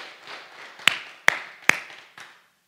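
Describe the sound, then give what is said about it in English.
A short burst of scattered applause from a group, clapping for a woman who raised her hand and answered a question aloud, with a few sharp, louder claps standing out over a soft wash of hand-clapping that fades out after about two seconds. “Everyone clap for her because she raised her hand and said it out loud.”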